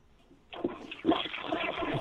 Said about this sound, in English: I hear a toilet flushing.